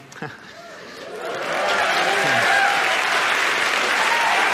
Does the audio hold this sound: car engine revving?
no